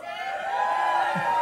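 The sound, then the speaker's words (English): A crowd of many voices shouting together into crowd microphones as a mic check, one sustained, steady call, holding at a fairly even loudness for about a second and a half with no pauses. “Can you do a mic check on yours right now?”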